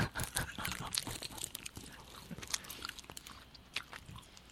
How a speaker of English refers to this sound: Gotta chew and swallow. It's so good. I swallowed. I'm eating a fruit roll up.